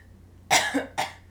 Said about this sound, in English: I think I've got, like, lung pop. I was going to edit that out when you did that. Also, I talked over your second cough.